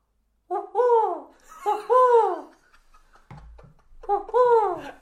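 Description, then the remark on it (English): A person imitates an owl hoot with three loud, wavering voiced hoots, the first two back to back, then a pause with a low rumble before the third. “I do a fantastic owl impression.”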